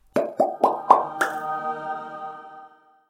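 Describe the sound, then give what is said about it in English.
Five quick, hollow plops as figures of Mary and baby Jesus are placed into water in an uneven rhythm, the last one splashier, followed by a soft fizzing ring that fades out after a couple of seconds. No one speaks. “Anyway, let's place Mary and little baby Jesus in the water.”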